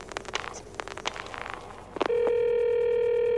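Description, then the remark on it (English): A telephone being dialed to call the police department: a quick, uneven run of clicks for about two seconds, followed by a loud, steady electronic tone that holds to the end. No one speaks. “Do you have to dial? Can't you ring them?”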